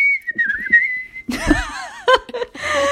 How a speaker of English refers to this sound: Get your whistles ready.